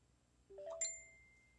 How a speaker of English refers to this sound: And forgive the beeper. Kane's phone, Kane's other phone there, his other phone talks to him.